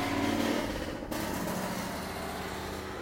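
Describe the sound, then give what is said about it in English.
A car engine rumbles loudly and steadily for a few seconds, a deep, rough growl with a brief dip in the middle before it continues at full strength, no voices present. “That is like the ugliest rumble I've ever heard from a car.”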